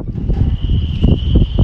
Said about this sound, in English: That noise in the background is the wind rattling through the spinnakers on the yachts in the harbour. It's very, very windy, but a very mild day today.